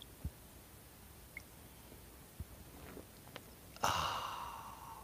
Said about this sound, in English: Fill it with your favorite liquid. I like coffee. And join me now for the unparalleled pleasure, the dopamine hit of the day, the thing that makes everything better. It's called the simultaneous sip, and watch it improve your life now.